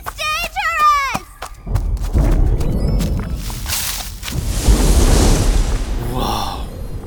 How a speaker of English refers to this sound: Oh, great. It's a cotton candy thunderstorm.